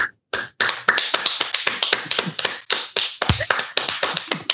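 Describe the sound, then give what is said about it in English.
Steady applause from a small group after a reading of the book Antiracist Baby, many sharp overlapping claps forming a loud, dense patter that runs for several seconds with no one talking. “You want to clap?”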